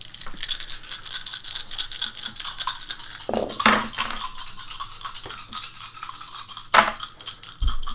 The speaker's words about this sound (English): Hold one second. I think I rolled the wrong number of dice.